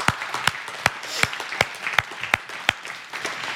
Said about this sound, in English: Can we just applaud the Lord for his goodness, for his freedom?